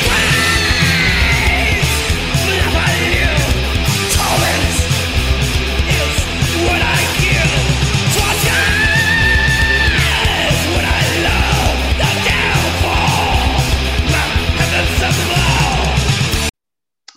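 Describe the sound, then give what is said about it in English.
Harsh, screamed vocals from a song's bridge ride over loud, dense heavy music with pounding drums, sustained and aggressive for about sixteen seconds before cutting off abruptly. “Screams from a life I live, torment is what I give, torture is what I love, the downfall of heavens above.”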